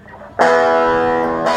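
A guitar amplifier turned all the way up gives a loud, sustained distorted buzz that kicks in abruptly after a brief quieter moment, droning steadily with rich harmonic fuzz and surging again near the end.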